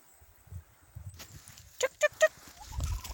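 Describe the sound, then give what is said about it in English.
A horse on a farm snorts in three short, sharp bursts in quick succession, loud, over a low, rumbling background. “But the cat's purring engines are always soothing, as are the horses snorting.”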